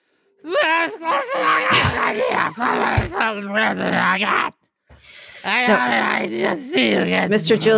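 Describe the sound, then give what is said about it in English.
A man's voice imitates a drunk Rudy Giuliani groaning and yelling, causing a commotion at a party, with slurred, wavering moans and loud outbursts, broken by a brief pause before more drawn-out groaning. “What does drunk Rudy sound like,”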